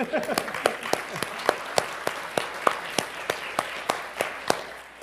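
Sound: audience clapping and applauding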